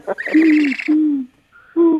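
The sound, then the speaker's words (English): An owl hoots three times, two drawn-out hoots in quick succession, then a short pause before a third. No one speaks. “Just like we have the one, and it goes up in Rockefeller Square with an owl in it.”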